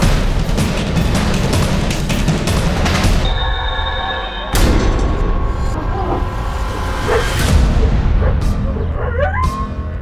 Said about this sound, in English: There were at least 17 or 18 coyotes in front of me, plus whatever I could hear on my left and my right and behind me. It was a huge pack.